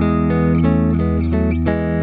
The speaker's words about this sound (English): it's a really good sounding reverb pedal